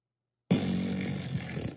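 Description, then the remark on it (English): An 'engine rumbler' fart sound effect bursts in abruptly after silence and holds steady for over a second, low and buzzing with a gritty, engine-like texture, fairly loud and with no talking. “That was an engine rumbler one.”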